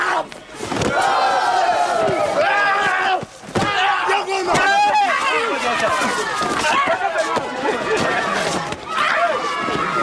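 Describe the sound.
A lively crowd of voices, including kids, shouts and cheers excitedly while watching huge wrestlers practice, with overlapping high-pitched cries, punctuated by occasional sharp thuds and slams.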